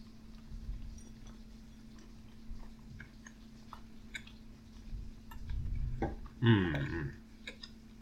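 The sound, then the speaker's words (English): Moist chewing of a vegan gluten-free brownie, with small clicks and smacks, growing louder toward the end with a sharper bite-like burst, over a steady low hum. “Sorry to make you listen to us eat.”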